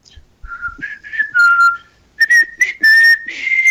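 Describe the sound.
A person whistles a bouncy melody, the pitch sliding and hopping between notes with short pauses, loud and clear with no talking.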